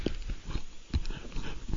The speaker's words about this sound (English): Oh, stop breathing into the mic. That's creepy. Stop breathing into the mic.